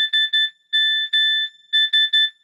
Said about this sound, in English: So, you know, the old Nokia phones, we know the sound. Do-do-do-do-do-do-do-do-do-do-do-do. We know that one. But what this is like when you actually got like an SMS text message, it would do this Morse code BB sound.